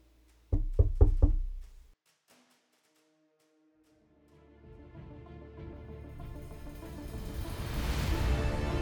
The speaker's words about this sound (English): Suddenly, there was a knock on the door. Comrade Penkovsky.